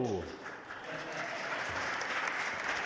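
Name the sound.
audience clapping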